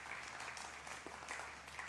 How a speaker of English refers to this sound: I'm going to mention Click for the kids, and man, they're a good group of kids. Let's give them a round of applause, man. They did good.